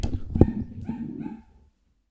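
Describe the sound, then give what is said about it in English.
A dog named Fendi barks loudly, a quick burst of sharp barks with a whiny edge lasting about a second and a half, then silence. “What are you barking at?”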